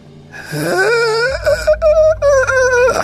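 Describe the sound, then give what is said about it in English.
A voice imitates someone gasping for air: a strained, wavering, rising vocal rasp that breaks into several choppy, loud gulps over about three seconds, with no words spoken. “Like a gasping for air kind of sound.”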